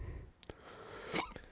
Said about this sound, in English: Oh, you got the hiccups there, brother.